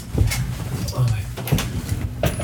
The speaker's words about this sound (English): Like, maybe it's, was that a knock? I think so.